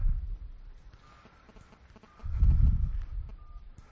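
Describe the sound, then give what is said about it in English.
A faint electronic cell phone ringtone for an incoming call from the speaker's wife chirps in short repeated beeps, half-buried under low rumbling and handling noise that swells in the second half. “When my wife calls, this is the call that I get.”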